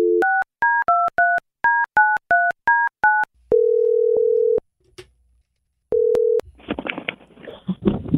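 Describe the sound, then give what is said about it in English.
A quick run of about a dozen two-tone touch-tone beeps dials a telephone number, followed by a steady dial tone hum that cuts off, returns briefly, then gives way to crackly line noise, as radio station US 99, Chicago's country station, phones its CMA Nashville trip winner. “Let's get somebody on the phone.”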